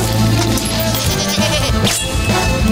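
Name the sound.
goat bleating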